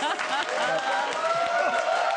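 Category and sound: crowd, applause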